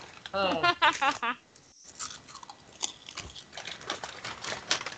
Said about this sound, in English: Oh. Wow, that is a lot of rustling and crunching. What are those wonderful crunchy things you're eating